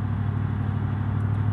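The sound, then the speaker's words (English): Steady low engine rumble and road noise of a truck being driven fill the cab, a constant drone with no breaks, like riding inside the truck cab at speed. “I am my truck today, friend, and I know it's noisy, but thank you for riding out with me.”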